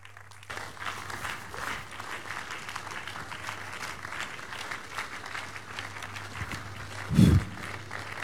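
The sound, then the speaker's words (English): Sustained applause from a crowd giving praise to God after a testimony, a dense steady patter of many hands clapping with no one speaking, a brief louder burst near the end and a low hum underneath throughout. “Put those hands together for the King of Kings, the doer of his great work.”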